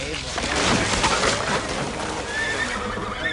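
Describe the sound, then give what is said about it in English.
A horse that appears to be dying whinnies in distress, its strained, wavering cries rising over a steady wash of noisy background sound, moderately loud throughout. “The horse looks like it's really, for real, legitimately dying.”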